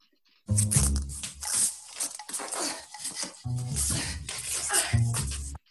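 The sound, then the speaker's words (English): The fabric of a dress ripping loudly in a few long, rough tears separated by short pauses, a harsh scratchy rasp lasting about five seconds, as Jamie Lee Curtis shortens her dress. “That is the sound of Jamie Lee Curtis shortening her dress.”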